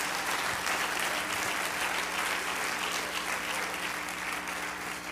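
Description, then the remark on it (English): An audience claps steadily for about five seconds, a dense, even wash of many hands at a fairly constant loudness, with a faint low hum running underneath and no one speaking. “Oh, clap your hands.”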